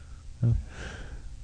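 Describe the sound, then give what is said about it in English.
A single yawn: a short voiced burst on the intake, then a long, breathy, airy exhale that trails off softly. No one speaks. “Yeah, good thing Frank's not in here while you're yawning.”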